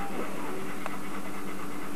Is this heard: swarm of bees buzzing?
no